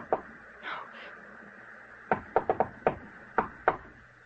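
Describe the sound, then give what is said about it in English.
A series of sharp knocks on a door, about seven raps in quick, uneven bursts, fairly loud after a brief quiet stretch with faint background murmur. “Someone knocked, Edith. Open the door.”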